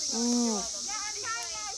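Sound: cicadas buzzing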